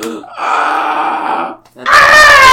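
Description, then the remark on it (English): A person lets out a frightened scream: a loud, drawn-out cry, a brief break, then a second burst that is higher and shriller. “That was a very accurate scream.”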